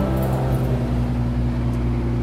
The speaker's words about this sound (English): The familiar sound of the generator of the … bandwagon. We're on a journey, a two-day journey from Oklahoma City to Las Vegas, Nevada. And as I get further away from the bandwagon, you'll hear that it's a little quieter out here.